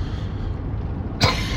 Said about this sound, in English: Excuse my coughing.